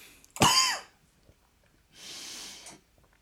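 A loud, harsh cough bursts out close to the microphone, followed after a short pause by a softer, breathy second cough or throat-clearing rasp. No talking.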